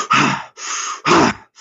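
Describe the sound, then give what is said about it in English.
Quick, forceful chest breaths in and out, each a noisy rush of air lasting under half a second, in a steady rhythm with no talking. “Someone's tired, and I say, right, well, you could do chest breathing for 3 breaths, right?”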